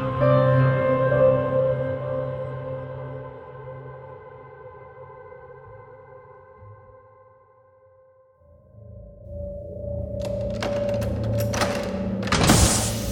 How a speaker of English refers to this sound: The bunker door opens, and those around me ready themselves in the gloom as they prepare to leave.